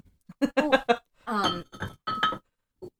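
A champagne glass clinks and rings in a quick cluster of bright, tinkling taps, then a longer shimmering ring and a few softer chimes trail off, with no talking.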